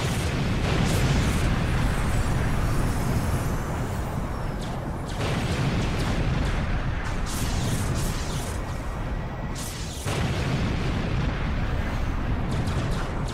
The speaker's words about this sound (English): Both bubbles lingered for a time and then rolled directly across for the factory. This time, the coordinates were centered, and the ensuing explosion was launched.